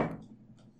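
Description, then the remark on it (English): A teacup knocks over with a sharp thud, followed by two light, high clinks as it settles, then quiet. “As she knocks over her beer cans next to her throne. That was a teacup.”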